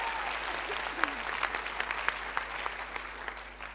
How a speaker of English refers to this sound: Praise the Lord. Let's give him a big clap.